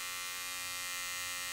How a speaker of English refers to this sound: He pushed and pulled the shaver along the deep red road under his bare chin.